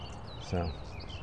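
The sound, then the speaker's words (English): Faint, high chirping birdsong drifts throughout at early dawn, with a brief low human vocal sound cutting in midway. “And you get to hear all of the lovely bird songs that are available here in the grim farmer's early dawn.”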